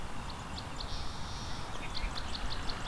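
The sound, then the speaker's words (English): Song sparrows and American goldfinches sing over steady low rumbling noise: repeated high chirps and short whistled notes, plus a sustained buzzy trill partway through, faint against the background. “Lots of song sparrows here too. And American goldfinch are singing as well.”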